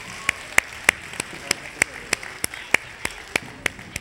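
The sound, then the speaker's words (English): A round of applause made of crisp, evenly spaced claps, roughly three per second, keeping a steady rhythm over a soft background hiss, with no voices. “Can we give them a big round of applause, please?”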